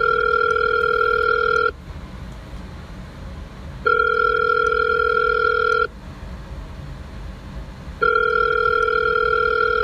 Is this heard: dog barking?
no